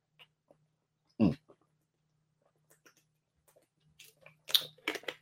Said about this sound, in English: You can hear me opening the bottle and that.